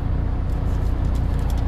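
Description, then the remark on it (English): A truck engine idles steadily at a truck stop in Pennsylvania with a low, continuous rumble, fairly loud, with no breaks or other sounds over it. “If you hear a little bit of rumbling noise in the podcast this evening, that is the truck running.”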